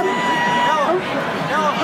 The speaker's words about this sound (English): Boy, what a crowd on Carb Day. This crowd is showing no signs of shrinking. This is just unbelievable. Pagoda Plaza, it's the Fan Midday Show.